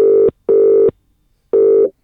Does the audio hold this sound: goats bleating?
no